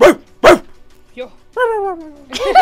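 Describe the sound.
A person imitates a dog, letting out two sharp, loud barks in quick succession, then a short yelp and a drawn-out whining howl, finishing with another gruff bark.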